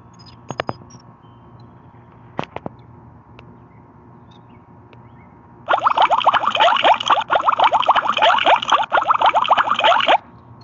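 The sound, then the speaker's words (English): A few sharp clicks, then about four and a half seconds of loud bong water bubbling, a dense, rapid gurgling rush that stops abruptly. No one speaks. “Back to the bubbles, y'all.”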